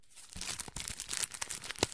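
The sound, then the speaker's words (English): Paper tearing in a quick series of rough, crackling rips, with a few sharper crinkly snaps, as the envelope of a letter is torn open. No voices, just the dry ripping sound. “I picked up the letter and opened it.”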